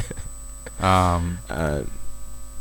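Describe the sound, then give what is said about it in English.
A steady electrical hiss and hum from a plugged-in guitar cable, heard through a microphone, runs continuously through the background, faint but constant, while a voice makes two brief drawn-out vocal sounds over it. “Yeah, so you haven't hold on, there's like some weird hissing I can hear from your mic.”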